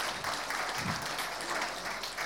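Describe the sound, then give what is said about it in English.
An audience applauds, a dense, steady wash of many hands clapping at an even, fairly loud level for a couple of seconds, with no voices standing out. “I think we should be giving a big clap after some of these things.”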